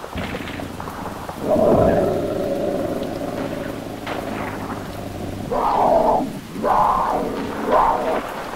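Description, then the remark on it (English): A thunderstorm with steady rain hissing throughout, broken by a loud rumble of thunder early on and several more deep, rolling rumbles toward the end. “In a flash, it threw its head back, wild hair slick with the rain, and with the thunder roared across the battlefield, a ghostly shriek that shook me to my very core.”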